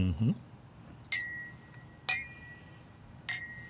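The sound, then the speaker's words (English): Three bright glass clinks, as in a toast with glasses of the third Renegade Barrel release, spaced about a second apart, each with a clear high ringing tone that lingers and fades. A short low voice sound comes just before. “Clink. What a cheerful noise.”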